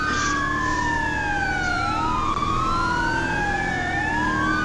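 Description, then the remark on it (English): An emergency vehicle siren wails loudly, sweeping slowly up and down in long rising and falling tones over a steady low rumble of engines and road traffic, as a car stops in the middle of the road in front of it. “Why would you stop in front of the emergency vehicle?”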